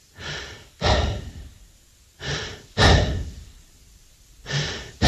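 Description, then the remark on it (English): A ball kid on centre court at Wimbledon pants heavily and rhythmically, with loud rasping breaths in quick in-out pairs repeating about every two seconds, almost dog-like, with no talking. “It sounds like there's a dog panting in the background and no one could work out what it was”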